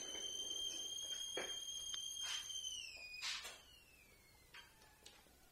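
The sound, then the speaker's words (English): A tea kettle heating water for hot tea whistles with a steady, shrill high tone and faint overtones, then the pitch slides downward and the whistle weakens, trailing off with a few soft clinks in the background. No one speaks. “We're having hot tea, so the tea's whistling.”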